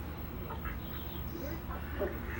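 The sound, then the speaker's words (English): Several ducks quack faintly over steady outdoor background noise, their short nasal calls scattered irregularly through the moment. “Got ducks over here too.”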